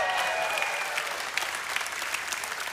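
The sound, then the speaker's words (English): An audience bursts into sustained applause as a speaker announces his book Dangerous Prayers: a dense, even wash of clapping that holds steady for about three seconds, with a faint high cheer rising through it near the start. “And that's why I wrote a book that recently released, this is your cue to cheer, it's called Dangerous Prayers.”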